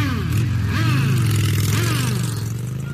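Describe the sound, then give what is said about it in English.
A loud motorcycle engine outside a biker bar in Sturgis, South Dakota rumbles steadily, its pitch rising and falling with a couple of revs over a low, throbbing idle. “How about outside this biker bar in Sturgis, South Dakota, what they think of the new, well-balanced Equilibrium cigars?”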